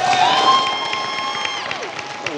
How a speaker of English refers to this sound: If you're cheering for the Broncos today, let's hear it. And if you're cheering for the Carolina Panthers, let's hear it.